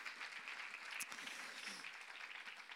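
A steady wash of audience applause for a man who has just shared his personal story of faith in Jesus, many hands clapping at once into a dense, even crackle that holds at a constant level with no voices over it.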